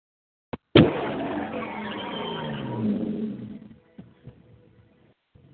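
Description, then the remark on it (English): A car skids loudly with tires squealing for about two seconds, the screech fading out, followed by a few scattered knocks and thuds. No one speaks. “Now that's how you're supposed to drive.”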